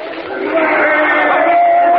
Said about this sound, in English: They're cheering the governor. He's just come out on the platform.